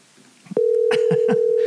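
A loud, steady phone dial tone starts abruptly and holds, while three quick keypad beeps tap over it in an even rhythm as a number is dialed to call someone back after a cell phone call cut out. No one speaks.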